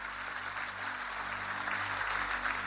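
The True North church audience applauds for everybody who said the prayer, a dense continuous wash of many hands clapping at an even level for a few seconds, with a faint low hum underneath and no voices standing out.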